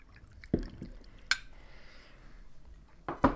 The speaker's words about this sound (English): I'm just gonna have another shot of wine. Wow. Okay, so about 30 seconds. Okay, I'm just gonna pour myself another one.